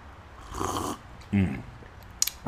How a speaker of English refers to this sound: Let me take a slurp here.